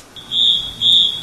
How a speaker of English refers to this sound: The smoke alarm's going off. Okay, thank you. The smoke alarm's going off.